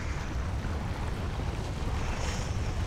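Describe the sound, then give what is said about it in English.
A steady, continuous wash of ocean waves with a deep low rumble and a breathy, wind-like hiss, holding at an even moderate level with no voices. “Somewhere in the primal ocean, a volcano erupts and kicks off the process of life as we know it.”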